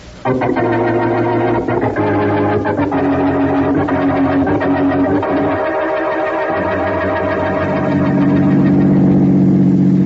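A car engine drones loudly and steadily as the vehicle speeds along, its low hum holding for the whole stretch and swelling slightly toward the end, with no voices.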